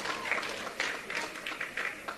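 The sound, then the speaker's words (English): A room of paid staffers at a press conference clapping steadily, with scattered cheers and whoops rising in short bursts over the dense, continuous applause. “He filled the room with paid staffers who clapped and cheered for everything he said.”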